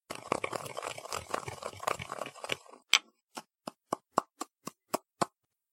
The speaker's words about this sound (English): And, over here, a box of ordinary cough drops. Sugar, cough drops, and for goodness sakes. Please, Inspector, just watch. I will now grind up the cough drops.